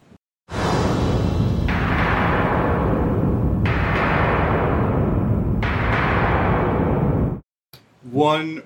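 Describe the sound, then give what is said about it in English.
A door slammed repeatedly to mimic thunder: about four loud, booming hits, each rolling into a long rumbling decay that overlaps the next, followed by a brief voice speaking. “Well, that's nothing more than a door being slammed.”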